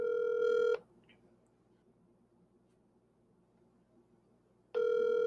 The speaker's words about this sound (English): He's not going to pick up the phone. He's going to pick up. This is one of our football coaches. He's not going to pick up the phone.